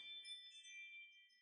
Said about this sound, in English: You are hearing my phone go off.